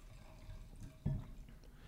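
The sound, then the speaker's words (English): Quiet liquid sounds of a Flambeau Sonoma Coast Chardonnay white wine being poured into a glass, with a soft bump of glass or bottle about midway and no one speaking. “What would you like to pour for us? Well, I guess in terms of the palate, we'll start with this white.”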